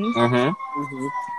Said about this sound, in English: So, okay, ambulance.